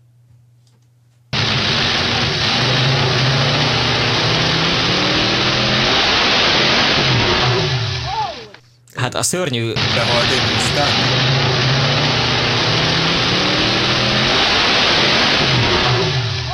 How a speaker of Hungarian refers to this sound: Ez úgy hangzik, mintha egy V8-as autó lenne egy teljesítménymérőpadon, és elforogna a kereke, és így beleszaladna hirtelen a tiltásba, és közben szétesne a motor.